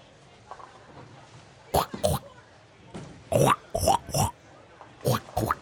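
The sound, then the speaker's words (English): Several people make loud, snorting pig oinks and grunts with their voices, playing space pigs in an acted scene, short bursts coming in quick pairs and clusters with brief pauses between, clear. “We can do one more scene with space pigs.”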